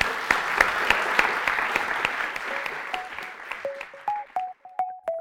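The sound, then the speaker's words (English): An audience breaks into dense, sustained applause to thank the speakers at the end of a talk, the clapping gradually thinning out over several seconds. A few sharp, pitched ringing tones appear toward the end as the applause fades. “Please join me in thanking our speakers.”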